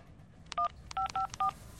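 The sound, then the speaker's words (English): Four short touch-tone beeps from a phone keypad being dialed, quick and evenly spaced, fairly loud and clear over a faint background hum with no talking. “Okay, I got this. It's ringing.”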